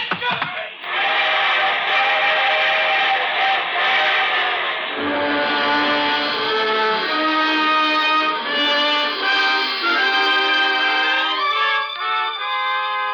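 A freight train whistle blows long and loud, a steady chord-like wail that holds for over ten seconds, shifting lower in pitch partway through, with no voices.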